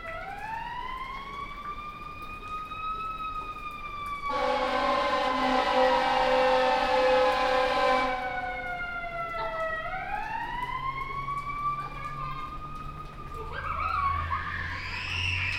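A fire truck siren wails in long rising and falling sweeps as it passes down a street near a fire station, joined midway by a loud blaring horn blast, then fades, with faint street noise and voices at the end.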